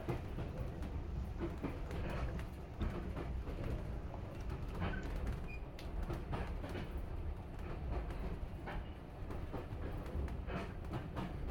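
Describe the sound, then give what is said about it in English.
A train rolls steadily along a heritage railway line between Sheringham and Holt, a continuous low rumble with faint rhythmic clatter of wheels over rail joints, with no talking. “This is such an amazing railway.”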